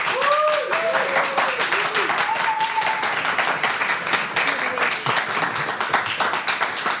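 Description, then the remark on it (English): An audience applauds loudly and steadily for several seconds as a vote in a debate, a dense crackle of many hands clapping, with a few voices whooping and cheering over it early on. “And if you're with I Know What You Did Last Summer, that the aliens would be totally impressed with everything humanity has accomplished, clap now.”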